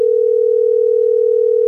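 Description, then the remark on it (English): A steady, loud telephone dial tone hums continuously as radio station B98.5 places a call, a single unwavering pitch with no voices over it. “We're going to get Rob on the phone.”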